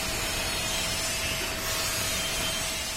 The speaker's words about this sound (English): Workers grind smooth the welds on a smokestack they've built for a new garbage incinerator.